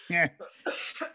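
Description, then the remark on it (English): A short cough bursts out, followed by a few rough throaty bursts and breaths, as if someone is clearing a tickle from the chest. “Hang on, I got a cough.”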